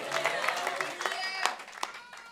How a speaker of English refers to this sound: Yeah. Maybe shouting hallelujah in the back.